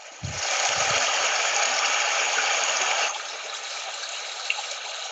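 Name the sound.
running water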